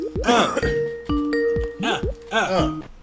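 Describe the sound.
A Skype video call ringtone plays a repeating pattern of clear, steady electronic tones, several short bursts in a row, while voices talk over and between them.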